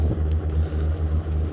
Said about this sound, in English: The plane you can hear now is about 300 yards away, just warming up.